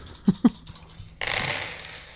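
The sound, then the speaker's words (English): Dice clatter with two sharp knocks followed by a few lighter ticks, then a steady hissy rattle as they settle. No one speaks. “Did we roll the dice? Oh, we got to, we must roll in the dice.”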